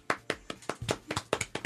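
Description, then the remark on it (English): An audience claps in a quick, slightly uneven patter of sharp, crisp hand claps over a couple of seconds, fairly loud, with no voices. “Please, snaps, not claps.”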